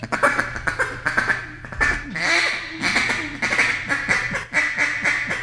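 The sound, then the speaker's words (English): A duck call is blown in a rapid series of sharp, raspy quacks, loud, with a short rolling chatter partway through before the quacking resumes. “I've killed a lot of ducks with a quack, just a quack, just single quack, and a lot of people don't even use that anymore.”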